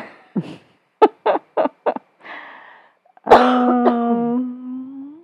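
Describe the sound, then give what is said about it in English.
A harsh coughing fit from a woman: a rapid burst of four or five hacking coughs, a wheezy gasp, then a long strained, croaking wheeze as she struggles for breath. “She's just gonna cough up a lung over there.”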